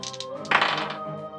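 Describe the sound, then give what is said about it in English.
Large dice tumble and clatter across a hard surface in a short burst of knocks and thunks, over a steady low background hum. “I'm going to break out the big dice for this one.”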